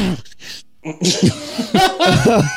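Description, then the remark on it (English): A couple of short, harsh coughs burst out, followed by a stretch of throaty, voiced sounds as someone recovers and clears up. “Oh, excuse me, hang on a second. I got a cough.”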